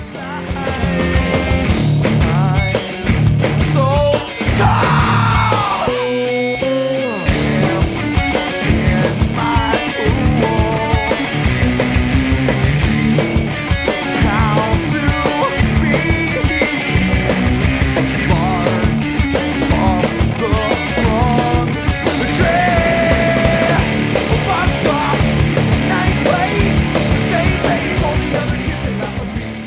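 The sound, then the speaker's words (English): A loud, dense rock song with a raw screamed vocal that breaks off into a brief near-silent gap before the full band crashes back in and drives on steadily. “You know, and I like how the song kind of falls apart after he screams right there too for a second.”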